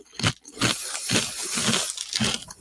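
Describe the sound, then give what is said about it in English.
Crunching from someone eating a Vlasic dill pickle flavored potato chip from the bag: a run of crisp, crackly bites and chews in an irregular rhythm, fairly loud, with no talking over it. “I'm going to have one right now just so you can hear the crunch.”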